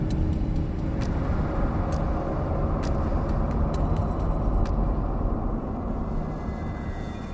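A car drives fast along a road at full throttle with a steady, loud low rumble of engine and tires, punctuated by faint sharp ticks, easing off slightly near the end. No voices.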